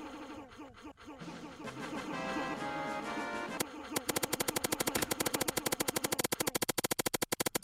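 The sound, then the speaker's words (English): A gunfire sound effect: a few seconds of tonal, buzzing sound give way to a rapid burst of machine-gun fire, loud, evenly spaced sharp cracks in a fast steady rhythm that thin out toward the end. “let me just unload this clip real quick.”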